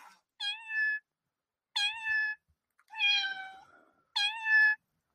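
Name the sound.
cat meowing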